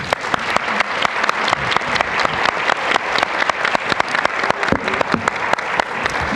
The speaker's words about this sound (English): So let me just give you all a round of applause for myself personally. Thank you for answering my questions and for talking to us today.